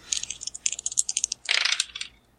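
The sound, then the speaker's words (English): Dice clatter and tumble across a hard surface in a quick run of sharp clicks, with a denser rattling burst midway before settling; fairly quiet, with no talking. “Alright, adding 2 dice.”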